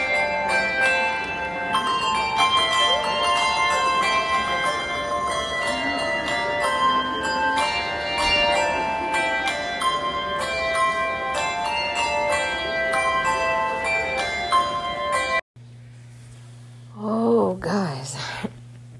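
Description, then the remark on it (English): Christmas carolers play handbells in the lobby of the Grand Californian in a bright, ringing melody, many overlapping chimes sustaining over a murmur of crowd chatter, then it cuts off to quiet with a soft breathy voice. “And right now they're playing the bells.”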